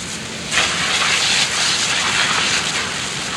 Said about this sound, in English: And about once a week, when Abe is really dirty, he gets hosed down.